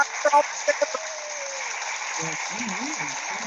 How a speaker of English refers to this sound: Giving us the applause.